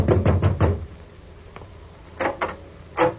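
Knocking on the front door of the home of the late George Grant: a quick run of four firm raps, a pause, then two more knocks and a final single one, clear with no voices.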